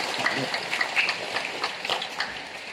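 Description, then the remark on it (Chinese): Several hundred parishioners in a church clap steadily as a blessing for members celebrating birthdays and a young couple's first wedding anniversary, a dense, crackling wash of applause that holds at an even, fairly loud level from start to finish. “大家的掌声不是形式的，也不是机械的，是发自内心的祝福。”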